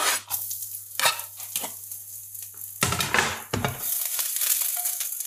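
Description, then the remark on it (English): Garlic sizzles and crackles in hot oil, a steady bright hiss that swells partway through, with a few scrapes and stirring clatters from a utensil in the pan. No one speaks. “So I've got some oil heating up now that I'm going to put the garlic into.”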